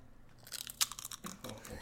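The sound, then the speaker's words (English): Close, loud crunching of chips being bitten and chewed right at the microphone, a burst of sharp brittle cracks followed by several quicker chewing crunches. “Listen to this crunch.”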